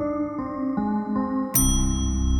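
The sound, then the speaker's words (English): A single bright ding of a front desk service bell in a lobby, rung while checking in, rings out loud, its metallic tone lingering, after a run of steady stepping tones. No one speaks. “I went into the front desk to check in, the lobby. As I ring the bell”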